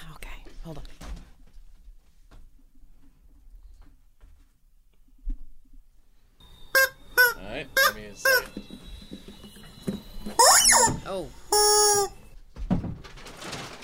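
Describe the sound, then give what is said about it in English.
A rubber chicken toy lets out a series of loud, shrill squawks in quick bursts, with a longer squeal near the end, while quiet whispery voices murmur in the background. “please hand me rubber chicken.”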